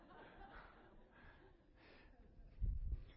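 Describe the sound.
A person imitates a thirsty deer's heavy panting: a few rhythmic, breathy huffs, ending in a louder, rougher burst of breath.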